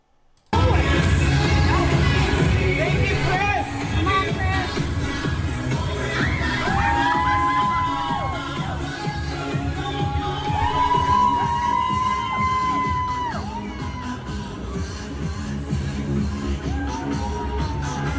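A large crowd roars with sustained cheering, whoops and shouting, a dense, loud wall of voices with rising and falling yells and occasional high-pitched cries throughout.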